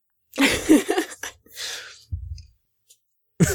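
A loud, explosive sneeze burst with breathy, strained sounds, followed by quieter exhales and a brief low thump, then another sharp burst starting right at the end.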